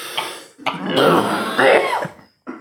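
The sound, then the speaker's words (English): A loud coughing fit: a short hack, then a long strained, raspy cough with a throaty rattle, ending in a brief final cough after a pause. “That much like some people have funny laughs, you have a really funny cough.”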